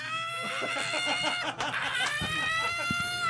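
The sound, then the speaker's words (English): A loud human voice lets out rapid, rhythmic clucking bursts that sound like a chicken, followed by a few higher squeaky cackles. “Oh, it's like a chicken.”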